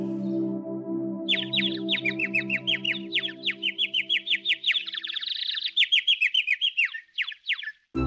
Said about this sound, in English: On the third day, they saw a bird, white as snow. The bird chirped songs with its beautiful voice for them.